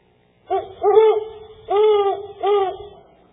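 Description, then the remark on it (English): An owl hoots four times in quick succession: two notes close together followed by two more. Each is a rounded, wavering call, clear, with nothing else around it. “It's an owl.”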